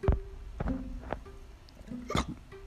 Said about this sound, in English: Ooh, excuse me. Ooh, that was a big one. Had to let it out. That belch. You know that belch? That big old belch.